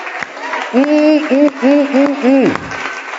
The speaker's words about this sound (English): Come on, put your Bibles down and clap your hands for Jesus. Come on, go ahead and clap your hands for Jesus.